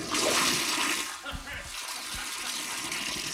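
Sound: toilet flushing sound effect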